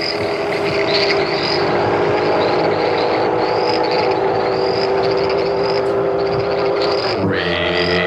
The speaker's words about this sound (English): It was always the Rainier beer. Oh, yeah. Motorcycle. Classic.